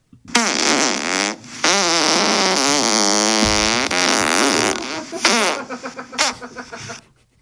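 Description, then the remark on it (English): A long, loud real fart with a wobbling, shifting pitch that runs for several seconds after a brief break, then trails off in sputtering bursts. “That was a real fart.”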